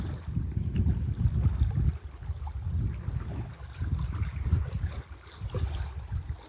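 Small waves wash against a lakeshore in soft, repeating surges every couple of seconds, with a low rumble of wind beneath them and no voices.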